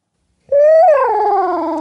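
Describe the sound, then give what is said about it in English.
A person imitates an owl hoot with the microphone held away from the face, one loud, sustained vocal call that rises slightly in pitch, then breaks and slides gradually downward, heard alone after a moment of silence. “Yep, rip out an owl hoot.”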